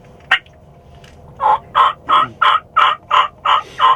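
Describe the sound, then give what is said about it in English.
A turkey call blown on a mouth diaphragm, imitating a bird: a short sharp note, then a steady run of eight loud, evenly spaced raspy yelps, close up and alone. “to do that, you just say put, and it's just you're loading up your diaphragm and pushing a bunch of air out.”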